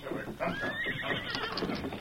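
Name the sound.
horse neighing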